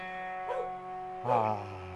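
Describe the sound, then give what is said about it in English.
A dog named Mahler barks twice, about a second apart, each bark short and fairly loud, over a steady sustained tonal hum that continues underneath throughout. “He's a barking dog.”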